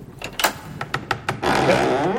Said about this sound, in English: Yes. And open this door.